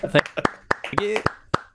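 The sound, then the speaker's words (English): A brief, sparse round of applause from two people: a dozen or so sharp, uneven claps, with voices talking and laughing over them. “I'm going to save that round of applause, and every morning when I feel bad about myself, I'll just play it.”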